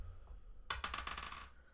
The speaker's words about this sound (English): 17. You hit him. Okay, roll your damage dice again.